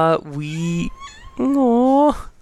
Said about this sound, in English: Sorry, we have a cat with us in our recording room, so that's going to be fun.